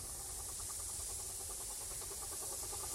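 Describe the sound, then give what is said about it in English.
A steam train lets off a steady, broad hiss of steam over a low engine rumble as it sets off again, with faint rhythmic pulsing underneath; no voices. “And with the release of steam, the train goes on.”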